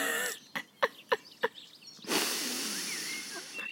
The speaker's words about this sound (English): A hen has just flew onto the arm of the chair.